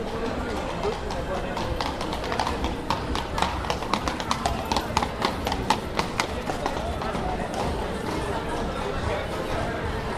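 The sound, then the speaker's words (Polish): Hooves of two horses, one grey and one brown, clip-clop on a paved street in a steady, brisk rhythm of sharp knocks that rise and fade over a busy backdrop of crowd murmur and voices. “Jeden koń siwy, drugi brązowy, taki kary.”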